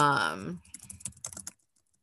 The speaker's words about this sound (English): Let's see. I'm Googling. You hear me like typing right now.